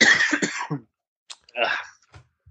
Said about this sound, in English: Sorry, I have a cough.